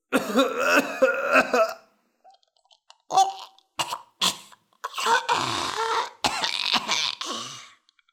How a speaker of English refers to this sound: Ugh, he cried. His eyes watered, his nose ran, and he coughed helplessly.